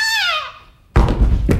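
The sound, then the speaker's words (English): A high whistle slides steadily downward and fades. Then comes a loud, heavy thud of a woman landing on her back after a jump, followed by a couple of rough, rumbling bumps. “She seems to have landed on her back, Harry.”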